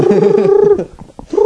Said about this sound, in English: It was that was some sort of dove. I don't know.